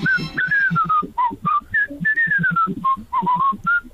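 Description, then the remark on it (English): Someone whistles a lively melody in wet weather by Nelson's Column, the bright pure tone gliding between notes in short phrases over a steady thumping backing beat. “Music, I can whistle pretty well, that's about it. Well, go on then, whistle us a little tune.”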